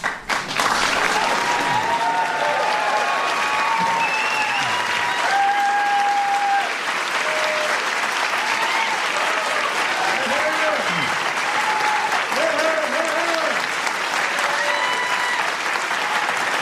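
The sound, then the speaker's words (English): Loud, sustained applause from an audience for Ellen DeGeneres, steady clapping that fills the whole stretch with cheers and whoops rising above it, no clear speech. “And she is due every single bit of that applause.”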